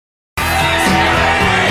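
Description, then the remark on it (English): After a brief silence, a loud shouted yell of "Push Marie" bursts in over dense, sustained music during a song recording, at the 3:40 mark of the song, the voice raised and strained against the full band for over a second. “at the 3:40 mark of this song, which I will drop in a soundbite of it, you can actually hear, and now I've gone back and listened to it like three times because I thought there's no way this happens. You can hear someone yell, "Push Marie."”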